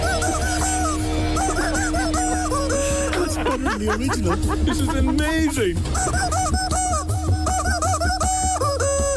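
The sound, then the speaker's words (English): Loud, nasal chicken squawks trace a song melody almost nonstop, wavering up and down with a reedy, bagpipe-like tone, while people talk briefly over it. “It kind of sounds like a bagpipe piping.”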